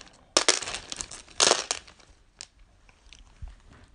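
A bag holding about a pound of dice, mostly grey D10s, is tipped onto a table in two loud, rattling clattering bursts, followed by a few scattered clicks as stray dice settle. No one speaks.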